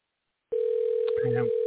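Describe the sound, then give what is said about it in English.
A phone line picks up with a loud, steady dial tone as a phone number is dialed; it starts suddenly after a brief silence and holds unbroken, with a faint murmur of voice briefly underneath. “I'm hitting the numbers.”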